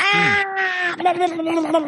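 A scream sound effect: a loud, sustained high-pitched scream holds steady for about a second, then breaks into a wavering, quavering cry that trails on at the same pitch.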